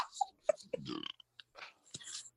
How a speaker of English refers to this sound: I'm just sipping my drink right now because you know.